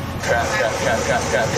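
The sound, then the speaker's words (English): A large truck engine drones loudly and steadily as the truck accelerates onto a busy interstate, amid the continuous roar of heavy traffic, with a pulsing, rising tone from the engine throughout the short stretch. “Look at all this traffic. There are cars everywhere.”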